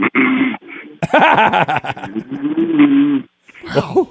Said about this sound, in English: No, seriously, he sounds like an elephant seal off the beach in Central California in San Simeon, right next to the Hearst Castle there on Highway 1. That's what he sounds like.